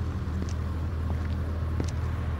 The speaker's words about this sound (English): Now I'm out the door and I see cars whipping by.